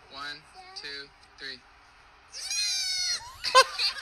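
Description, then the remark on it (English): Two baby goats bleat: three short, wavering cries, then a longer, sustained bleat with overlapping voices on nearly the same pitch, followed by a brief, louder final cry. “So what we have here are a couple of baby goats that can sing exactly one pitch.”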